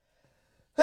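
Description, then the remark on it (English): A single sudden, loud sneeze bursts out after near silence, a sharp breathy blast that starts abruptly and cuts off at the end. “Bless you. Sorry.”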